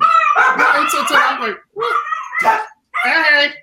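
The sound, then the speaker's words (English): Dogs bark and yip in three loud bursts separated by brief pauses, the high, strained calls running together in quick succession. “Well, that might be how, with the dog. The dogs.”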